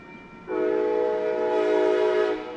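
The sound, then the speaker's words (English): A train horn sounds one long, loud, steady blast lasting about two seconds, over a low rumble of the train on the tracks. No one speaks. “The Dom Museum is just about an hour and a half drive from Kansas City, or about a two-hour train ride, one of the stops along Amtrak's Missouri River Runner line.”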